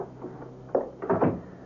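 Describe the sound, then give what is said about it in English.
An apartment door is shut: a muffled thump followed by a cluster of heavier clunks as it swings closed and latches, moderately loud over a dull, hissy background. “Come on in, Clark, and close the door.”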